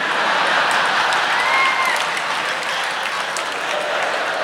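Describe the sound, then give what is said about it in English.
A large crowd bursts into sustained applause and cheering, dense clapping filling the space at a steady loud level with a few whistles or shouts rising above it. “Crowd goes crazy.”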